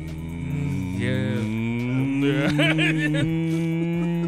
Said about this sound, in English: And give him a hum on the mic.